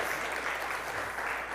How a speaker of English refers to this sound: So I want you to clap like crazy when we get to that. Right now it's good too, sure.